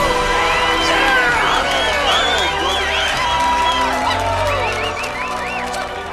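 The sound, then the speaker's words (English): A large crowd cheers loudly and continuously, with overlapping shouts and whoops rising and falling throughout, a dense roar of many voices. “Crowd cheers.”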